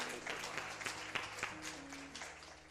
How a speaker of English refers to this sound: Thank you all so much. Watch this. Give them a round of applause for me, please.